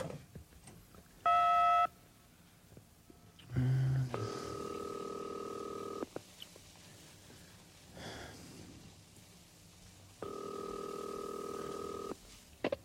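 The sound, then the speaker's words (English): A telephone call being placed through to the operator: a short dialing beep, then two long, steady ringback tones about four seconds apart, heard clearly through the earpiece with a faint background hiss and no talking. “Well, maybe you better go through the operator.”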